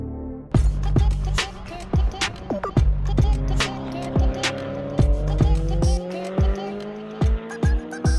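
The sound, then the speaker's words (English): Race cars scream around a track at a Time Attack event in North America, engines revving hard with rising pitch sweeps and sharp gear-shift pops repeating every second or so, loud, with tire squeal mixed in. “I think not only seeing all the cars on track and hearing the sounds”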